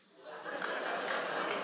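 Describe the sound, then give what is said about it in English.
An audience reacts to the mention of the Ford Pinto with a swell of scattered clapping mixed with a few boos and low groans, rising quickly and holding at a steady, fairly loud murmur. “Claps, couple of boos, yeah. Couple of groans, and a lot of like, what?”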